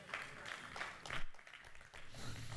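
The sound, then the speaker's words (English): A few weak, scattered hand claps from one section of a small audience during a Christian sermon, faint and uneven, fading out within a couple of seconds over a low background murmur. “Thank you for that very weak hand clap from this section over here.”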